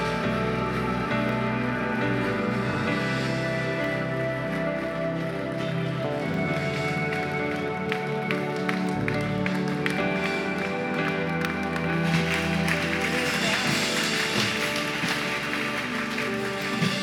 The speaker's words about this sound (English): I think there's still a few more people coming. Let's keep clapping. Come on, let's keep clapping. Let's keep clapping. Let's keep clapping. Come on, let's celebrate as people are coming.